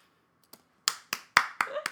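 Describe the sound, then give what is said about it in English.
A quick, steady run of about five sharp hand claps, evenly spaced and fairly loud, preceded by a single faint clap, with no voices. “Just need to give a good clap.”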